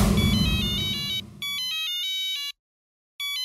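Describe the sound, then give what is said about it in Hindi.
A mobile phone ringtone on Babita's mobile, a late-night call from Jethalal in Taarak Mehta Ka Ooltah Chashmah, plays a bright, repeating electronic melody in short bursts, with a brief pause before it resumes. Low background rumble fades early on, leaving the ringtone alone and clear. “डैडा लाल का फोन बबीता के मोबाइल पर, वो भी इतनी रात को।”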